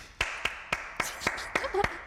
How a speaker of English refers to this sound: Round of applause.